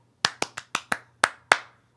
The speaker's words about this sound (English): You can do the Duende clap. Duende!